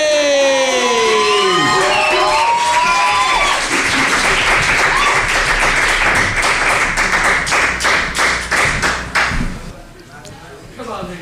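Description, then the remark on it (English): An audience at a Youth Slam poetry event gives loud applause with high, excited cheers and whoops as the next poet is introduced. It shifts into steady, dense clapping that thins out toward the end, leaving a few last claps. “your hands together, our next poets in the Youth Slam”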